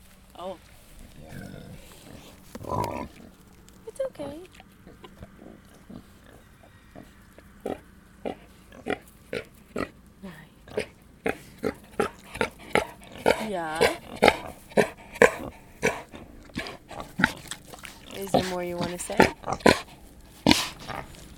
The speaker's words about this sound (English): The ducks have led me straight to these feral pigs. Let's hear what they have to say.